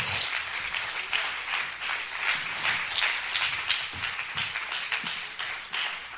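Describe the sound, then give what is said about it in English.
A standing crowd claps hands to give thanks to the Lord, in steady, dense applause that holds at a fairly even level for several seconds, a bright crackle of many overlapping claps with no voices standing out. “Come on, can we clap our hands and give thanks to the Lord for his goodness?”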